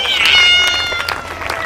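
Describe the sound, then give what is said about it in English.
A cat meows in a drawn-out, high, wavering cry lasting over a second, loud, with faint scattered crowd noise behind it. “How about let's hear it for my cat?”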